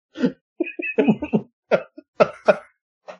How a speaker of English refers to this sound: I'm coughing.